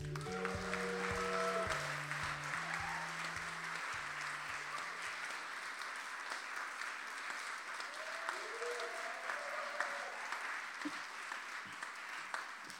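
A live audience at True Stories Live at Norwich Arts Centre applauds steadily as a storyteller is welcomed to the stage, a dense wash of clapping that holds throughout, with brief musical tones and faint voices underneath at the start.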